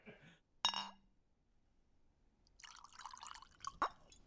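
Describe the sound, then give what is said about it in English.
A sharp glassy clink rings out, followed after a short quiet by a drink splashing and gurgling into a glass, with another light clink near the end. No one speaks. “So you ready for me to pour?”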